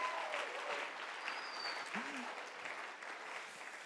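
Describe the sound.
Steady applause from an audience, a dense wash of many hands clapping at an even level for several seconds, with a few faint voices and a brief whistle-like tone mixed in.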